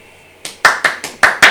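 A brief round of applause: about six crisp, evenly spaced hand claps in quick rhythm, starting soft and growing louder, with no talking.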